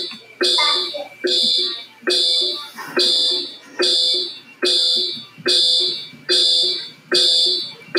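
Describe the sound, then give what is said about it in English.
A fire alarm blares in loud, harsh electronic bursts, about ten of them in a steady, rapid rhythm, each a shrill buzzing tone that cuts off before the next begins. “It's like a fire drill.”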